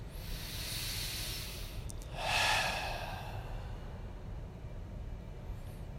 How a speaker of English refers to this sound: You can already start taking some deep breaths in through the nose, filling the body, and out through the mouth, just to relax a little bit. You can exaggerate those exhalations.